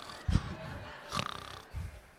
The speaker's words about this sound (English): Look, she's already woke up. She's already been snoring a couple of times.